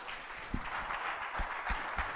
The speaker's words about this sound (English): Give the Lord a clap offering right there.